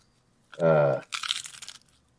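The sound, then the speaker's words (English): A brief voiced sound is followed by a dry crunch of someone biting into crisp food, a single crackly burst lasting under a second. “Why are you crunching again?”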